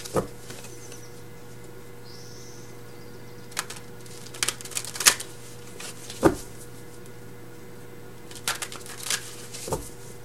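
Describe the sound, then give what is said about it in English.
Cards being shuffled in a few short bursts of crisp riffling and tapping, separated by pauses, over a faint steady background hum, with no one speaking, during a reading for Aries. “Sorry if the shuffling's loud.”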